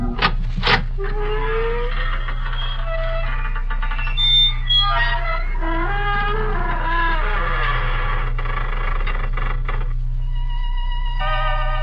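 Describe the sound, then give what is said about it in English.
The creaking door of Inner Sanctum Mysteries: a long, slow creak that groans and squeals with wavering, sliding pitch for about twelve seconds over a steady low hum. No one speaks. “You know, so many people have asked me to explain the significance of the creaking door, but I don't really have to.”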